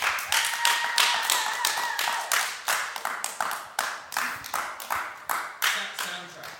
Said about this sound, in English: So maybe this is a clap-o-meter time for us to ask whether we go bag or Biff. So shall we hear the claps for Bag?